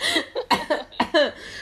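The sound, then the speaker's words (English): A loud fit of choking coughs from a person who choked on tea: five or six harsh, rapid bursts in quick succession, with no talking. “I just choked on my tea.”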